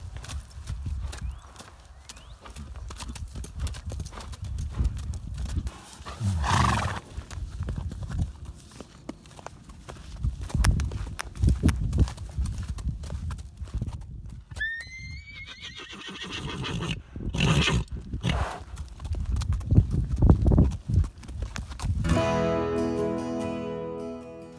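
A stallion named Titan, ridden by its owner, clip-clops steadily, and partway through the horse lets out a loud, rising whinny, with more hoofbeats and snorting around it.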